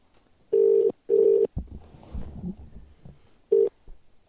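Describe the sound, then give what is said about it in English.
An outgoing call rings on the line: two quick tone bursts close together, a pause filled with faint room noise and murmuring, then the start of another ring, clear and fairly loud. “To the person to on the other end of the phone.”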